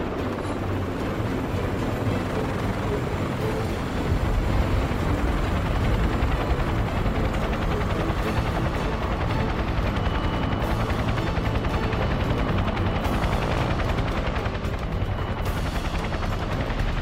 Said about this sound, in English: there's a helicopter place up ahead. Okay, set her down, but be ready to take off again.